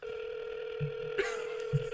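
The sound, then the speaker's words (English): A steady electronic phone tone hums continuously over speakerphone, like the ringback heard while an outgoing call waits to connect, with a few soft low thumps underneath and no voices. “Come on. Pick up, buddy.”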